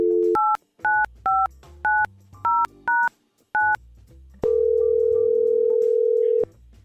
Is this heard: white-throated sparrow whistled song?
no